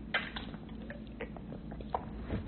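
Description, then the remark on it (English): Someone sips a drink of water, with small wet mouth clicks and a soft swallow scattered over a couple of seconds, quiet and without talking. “Now, granted, hold on, I'm just going to take a drink of water.”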